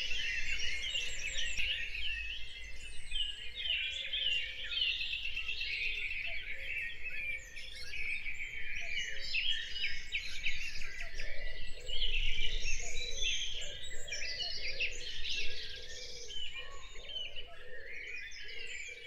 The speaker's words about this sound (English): Time has got on. It's now 5:30. Lots of bird activity.